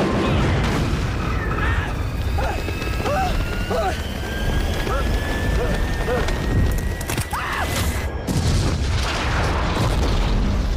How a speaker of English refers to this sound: It explodes. Oh, man! And destroys their entire house. Oh, my God. The whole plane lands on top of them and the house.